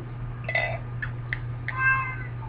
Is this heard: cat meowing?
yes